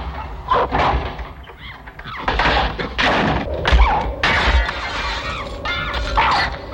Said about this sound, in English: That monkey rips through that fucking door. It's horrifying. Dude, the monkey punched through the glass.